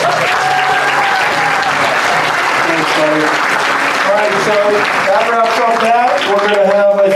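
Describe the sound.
Sustained audience applause at a party where toys are being collected, dense and loud, with crowd cheering and overlapping voices mixed in throughout.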